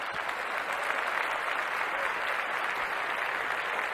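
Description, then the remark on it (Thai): Steady applause from a crowd, many hands clapping at an even, sustained level for the whole four seconds with no voices standing out. “โอ้โหเขาฝีมือจริงฮะฝีมือจริงตบมือให้อีกหนึ่งที”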